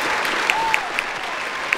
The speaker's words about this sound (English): Sorry, I didn't mean to step on your applause, no.